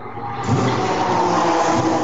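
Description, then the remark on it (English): A big 5-litre Ford V8 race car engine burbles loudly, a steady throaty rumble with an uneven pulsing beat that holds for a couple of seconds, with no one talking. “Yeah, and when you hear them fire up that big 5-litre Ford V8, Which I think it's a South African engine.”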